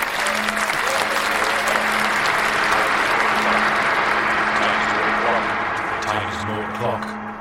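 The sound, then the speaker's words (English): A crowd at a golf day and gala evening applauds loudly and steadily for several seconds, dense clapping with a faint hum underneath, tapering slightly toward the end. “A round of applause.”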